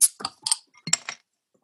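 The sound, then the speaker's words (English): A beer container being opened, heard as a quick series of sharp metallic clicks and clinks, about five in under two seconds, then quiet. “Hopefully I could get the sound for you guys so you hear the click or the crack.”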